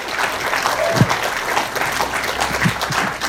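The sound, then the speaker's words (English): An audience claps steadily for a few seconds, a dense, even patter of many hands with a couple of louder individual claps standing out, and no one speaking over it. “Can we just give her a big round of applause?”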